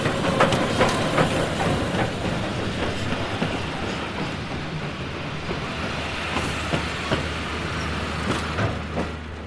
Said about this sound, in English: But when the 3 o'clock train glided in, and glided out again, having brought no passengers to our little station,